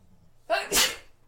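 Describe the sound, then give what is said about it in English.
A single loud sneeze: a quick sharp intake followed by a bright, explosive burst that fades within about half a second, with no talking over it. “I got to sneeze.”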